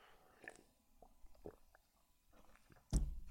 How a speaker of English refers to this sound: I'm going to take another sip of water.